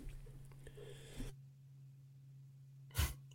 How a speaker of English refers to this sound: coughing. And he had to mute.